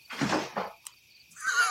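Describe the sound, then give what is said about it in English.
A cat knocking something about: two muffled, rattling thumps in quick succession, a sharp little click, then a brief higher-pitched scraping rustle, with no one talking. “Oh, it's just my cat.”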